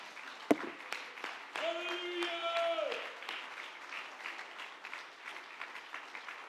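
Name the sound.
audience clapping hands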